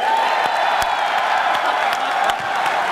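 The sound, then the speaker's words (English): A panel audience answers a call for a round of applause with a dense wash of applause and scattered cheers and whoops, steady and loud throughout, sharp individual claps popping out of the continuous roar. “But right now, give me a round of applause if you think Ryan should cancel his next panel and we keep going.”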